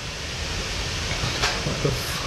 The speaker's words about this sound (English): That's water boiling. That was an air fryer or something.